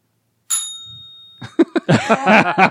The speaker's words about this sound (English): let the bell answer for our crowd. Bell answers, so it is.